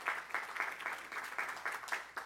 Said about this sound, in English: Give our GAs a round of applause.